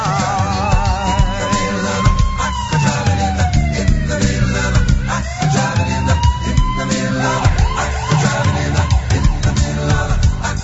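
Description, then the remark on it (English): An emergency vehicle siren wails loudly and continuously, sweeping up and down and switching at times to a faster warbling yelp, over a dense rumble of traffic. “Got my siren and my lights, and I'm ready to roll.”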